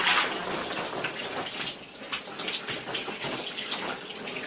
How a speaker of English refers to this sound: Wait, who is that pouring? Is that the Undertaker?